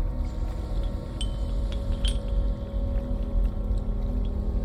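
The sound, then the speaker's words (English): Steady wash of water with a low, continuous rumble, as if drifting on a boat, broken by a few faint, brief clinks and taps. No one speaks. “Floating on the water.”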